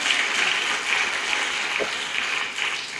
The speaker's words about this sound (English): How many of you guys can give a strong applause to the Lord?